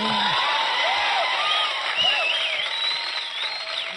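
A studio audience cheers and whoops over steady applause, a dense, loud roar of many voices with rising shouts layered on top, sustained throughout without a break.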